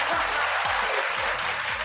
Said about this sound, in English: Oh, wait, wrong button. There we go. Got his own laugh track. My own applause track.